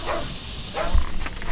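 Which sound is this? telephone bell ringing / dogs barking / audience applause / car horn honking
dogs barking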